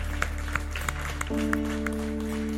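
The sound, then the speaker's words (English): An audience claps their hands in praise of the Lord in a steady, rhythmic pattern while sustained organ or keyboard chords swell underneath, with a low hum throughout. “Let's give the Lord a hand clap of praise, shall we?”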